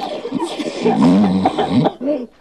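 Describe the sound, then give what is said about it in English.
A person fakes being sick with an exaggerated, theatrical cough, as if on a sick call to work: a few loud, voiced hacking bursts with throaty groaning, ending in one last short cough. “You don't want them to think that you're Ferris Bueller with a keyboard full of cough sound effects on the other end of the line.”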